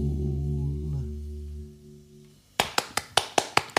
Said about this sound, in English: Thank you. 11, 12, 13. 13 claps. Yeah. That's my scoring system.